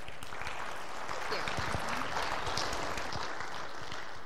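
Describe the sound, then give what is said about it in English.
An audience applauds steadily for several seconds to welcome a speaker, a dense, even wash of many hands clapping at once with no pauses, holding a constant moderate loudness throughout. “So will you please help me welcome her with a round of applause.”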